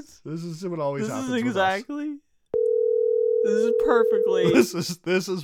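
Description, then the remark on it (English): A single steady phone ringing tone hums for about two seconds after a burst of chatter as an outgoing call goes unanswered, and voices start talking again over its final stretch. “He literally called us 2 minutes ago and now is not answering the phone again.”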